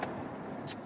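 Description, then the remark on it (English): Steady low rumble of a car cabin on the road in traffic while the driver runs an errand, with two short, sharp ticks near the start and end. No one speaks. “And right now I'm just in traffic, trying to do a little errand.”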